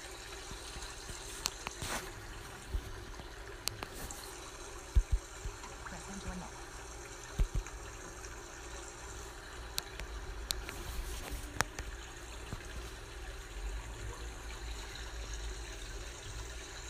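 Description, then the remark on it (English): A steady wash of ocean water fills the scene, a soft continuous rush with occasional small splashes and clicks rising briefly above it, with no voices. “And you ask yourself, what wisdom does the ocean have to teach me?”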